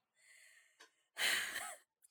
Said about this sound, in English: I tried to swallow part of it, and then I like almost started coughing, so I was like, shit, now I gotta hold the rest of this in my mouth until I calm the fuck down.